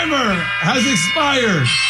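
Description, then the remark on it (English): A timer alert sounds, a loud buzzy electronic tone with a synthetic, voice-like announcement sliding up and down over a steady hum, lasting about two seconds. “Timer has expired.”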